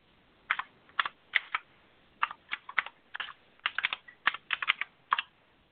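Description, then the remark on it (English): Clattery typing on a computer keyboard, bursts of quick key clicks in uneven clusters with short pauses between them, heard alone without any voices. “We got to get you a new keyboard.”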